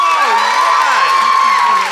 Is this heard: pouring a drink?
no